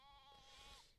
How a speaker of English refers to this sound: Can you hear that? Everything's taking a turn for worse. Sheep. Oh, Jesus. He's lost it. Demonic sheep.